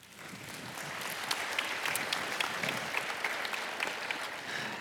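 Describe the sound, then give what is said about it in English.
An audience claps steadily to welcome a speaker coming up, a dense patter of many hands with sharp individual claps standing out, sustained at a fairly even level with no voices. “We should clap for you”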